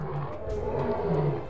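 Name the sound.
lion roaring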